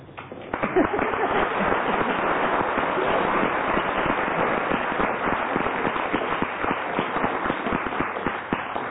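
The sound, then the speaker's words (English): An audience claps to show agreement, deciding a round of a game, a dense, continuous patter of many hands that starts abruptly and holds at an even, fairly loud level throughout, with murmuring voices mixed in. “If you agree, clap.”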